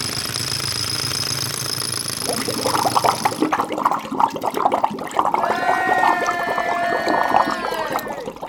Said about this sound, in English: On March 11, 1889, Joseph Daniel Bell and his crew drilled into a rock formation in South Waco and sent a geyser of hot water spewing into the clear blue Central Texas sky.